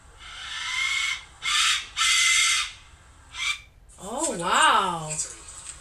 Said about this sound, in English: This is a video of a man using a death whistle in the middle of the woods, so no one's really going to hear it, but you guys are going to hear it firsthand.